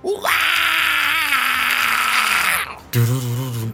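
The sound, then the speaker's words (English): A man, a game master voicing a creature, lets out a long, loud, strained scream held for over two seconds, acted like a character's cry, followed by a shorter, lower vocal burst. “he looks at you and just lets out this almighty scream.”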